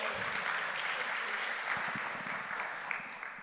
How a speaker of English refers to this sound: Let's give her a massive round of applause.